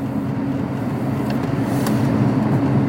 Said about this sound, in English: But a little traffic here going into my, on my way here. But I should be there pretty soon.